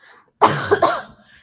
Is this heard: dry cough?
yes